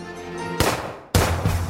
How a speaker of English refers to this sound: I was jolted out of sleep by the sound of gunfire, which was not something I expected. When I came out to the front room, my mom was on the phone with the state police, and someone was shooting at our house.